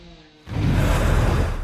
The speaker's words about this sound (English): in that wind, you can hear the roofs flapping all around here.